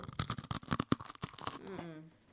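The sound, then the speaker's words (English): A fortune cookie from a Chinese restaurant cracks open with a quick run of crisp, dry crunches and snaps in irregular bursts, followed by a brief voice at the end. “If you're watching, it's just a fortune cookie from a Chinese restaurant.”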